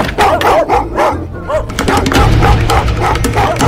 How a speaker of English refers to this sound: Are those dogs locked up? Sort of.